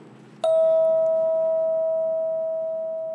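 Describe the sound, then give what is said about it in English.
A single clear bell is struck once during a classroom breathing exercise, sharp at first, then its bright, steady tone rings on and slowly fades over a few seconds against a quiet background. “And after the ring of the bell, follow the sound of the tone.”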